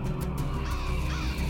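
Harsh cawing from a crowd of attacking, dive-bombing crows fills the air, loud and continuous, with overlapping calls layered over a dense, rushing background and no voices.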